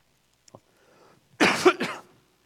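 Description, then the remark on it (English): A fairly loud rasping cough with a throat clear from a person who has had a cough all week, two harsh bursts in quick succession after a faint click and a moment of near silence, with no talking. “I've been battling with a cough all week, so I keep taking little things.”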